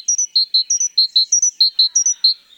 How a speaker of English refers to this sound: This is the song of a great tit, one of the most familiar sounds of the European spring. The great tit, a relative of our chickadee, is common in the forests of Europe.